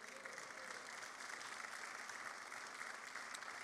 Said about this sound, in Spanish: Y por eso Dios ha llamado a nuestros pastores. ¿Puede dar un aplauso, Señor, por sus vidas?